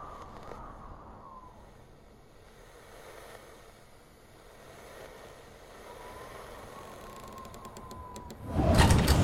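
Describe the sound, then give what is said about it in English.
A door slides along with a low rolling, whining drag for several seconds, then shuts with a loud, sharp bang right at the end. No one speaks. “What have I told you about closing the door?”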